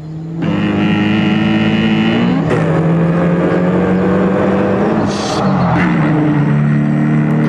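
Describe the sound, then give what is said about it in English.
A car engine in a car commercial revs loud, its steady droning pitch climbing and dropping as the gears shift a few times, with no one speaking. “Once we knew that, we realized this car commercial was doing the same thing with ….”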